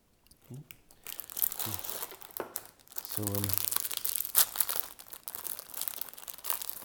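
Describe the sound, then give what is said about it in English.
Loud crinkling and tearing of a plastic packet of Pimm's biscuits, a Lanzarote knockoff of Jaffa cakes, as it is pulled open, a continuous crackly rustle with brief vocal sounds mixed in near the start. “So the first ones, like a Lanzarote knockoff of a Jaffa cake called Pimm's.”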